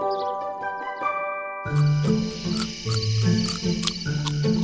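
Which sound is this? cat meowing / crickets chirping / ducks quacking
crickets chirping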